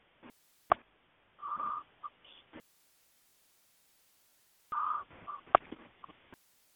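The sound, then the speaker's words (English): Two rough, rasping snores about three seconds apart come through a thin, crackly phone-like line, with sharp clicks and brief static between them and no talking. “You hear snoring in the background?”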